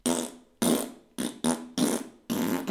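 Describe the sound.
A voice imitates a string of farts as a morning wake-up call: about six raspy, sputtering bursts in quick, uneven succession, each starting abruptly and trailing off, fairly loud with no talking.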